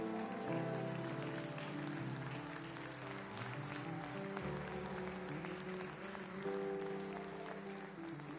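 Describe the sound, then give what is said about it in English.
An audience at a church service claps steadily and loudly as a hand clap of praise for Jesus, a dense, continuous wash of hand claps, with sustained keyboard-like chords playing underneath throughout. “Come on and give Jesus a hand clap of praise one more time.”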